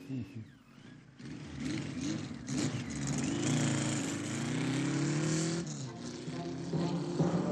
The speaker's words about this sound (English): Bubba Zanetti was the only one who didn't take the muffler off his motorcycle.